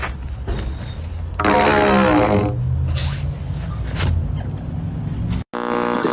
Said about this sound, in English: I'm at Lowe's. I have this PVC pipe, and I'm going to fart in it.